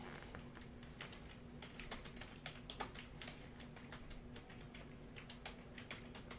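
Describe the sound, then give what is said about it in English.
Rapid, irregular clicking of keys on a computer keyboard as someone types a search for cancer centers in America, fairly quiet, with a steady low hum underneath and no voices. “Oh, look, it's at the top when I start typing that in.”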